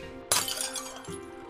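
A sudden crash of an emergency break-glass pane smashing, followed by about a second of bright tinkling shards settling over a low steady hum, with no voices.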